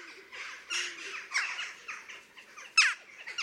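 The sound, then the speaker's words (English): A busy stream of short, high-pitched jackdaw 'chiak' calls, overlapping as if from several birds, with one sharper, louder call standing out near the end. “The calls are short and high-pitched compared to those of the crows. The most characteristic are a happy chiak and chiok.”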